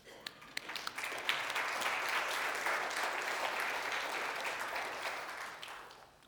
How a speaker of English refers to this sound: I just thought it noteworthy to call attention in our bulletin that there is a couple here this morning that has an anniversary today, and they've been married for 63 years. Would it be appropriate to give some applause?